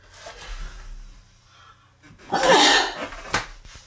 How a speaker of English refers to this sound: I'm going to sneeze.